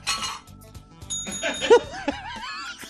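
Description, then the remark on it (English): A comedian vocally imitates a bell: bright, high ringing tones start partway through and linger, with light chuckling and a wavering, sliding tone following. “Can you do a bell?”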